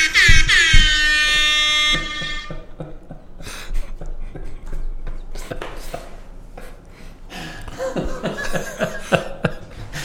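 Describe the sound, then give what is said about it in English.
A loud, blaring air horn blast from a phone soundboard lasts about two seconds, bright and buzzy with stacked harmonics, followed by scattered clicks, knocks and muffled laughter-like sounds. “I'm going to rap air horn him.”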